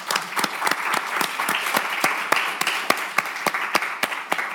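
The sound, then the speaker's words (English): An audience at a talk applauds in thanks to a collaborator steadily for several seconds, a dense wash of many hands with sharper individual claps popping out irregularly throughout, sustained at an even loudness without pause. “We should put a big applause for her, no?”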